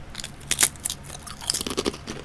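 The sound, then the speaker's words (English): Crisp crunching as someone bites into a thick potato chip, almost twice the size of thin chips, dry rather than oily, with little green flecks of flavouring; a series of sharp brittle cracks followed by a few quieter chewing crunches, with no talking. “Going for the munch there.”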